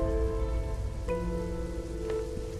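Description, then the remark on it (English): A steady, even rush of heavy rain from a storm hisses throughout, with sustained droning tones running beneath it and a couple of brief sharper splashes; no one speaks. “I came from the east and was caught unawares in the storm.”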